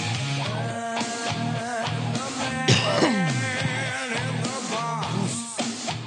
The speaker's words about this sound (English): Oh, my God. I keep coughing. Must be the dairy. Must be the dairy.